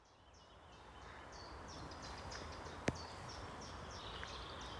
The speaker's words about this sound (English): We can probably hear distant cars, but also there are two, well, we thought they were buzzards, but actually they are rooks. We're doing a completely different section of Chapel Common.